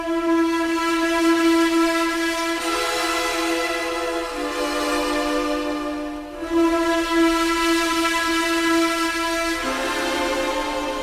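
A train horn blasts in a long, loud, sustained chord, its pitch stepping down and back up as the train passes, with rumbling rail noise underneath and no voices.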